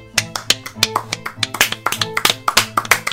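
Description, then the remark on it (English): A rapid string of sharp hand claps, about a dozen or more, in a quick, slightly uneven rhythm, with a low steady tone humming underneath. “Season two, season one claps.”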